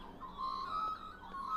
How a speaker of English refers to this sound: I hope those birds in the background are so great for you, because I love them.